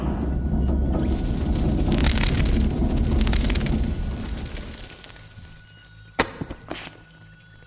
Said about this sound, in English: That was a book. I know that sound anywhere. Sermons. I found Silas Lodge's book of sermons.